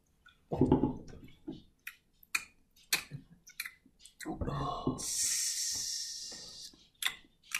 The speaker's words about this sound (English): That's how I drink my water. I chew it. It was so uncomfortable. It's just not fun. So it was flat. Shit's so flat.